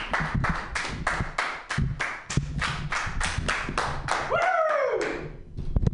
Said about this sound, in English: So let's give him your round of applause, all two of you.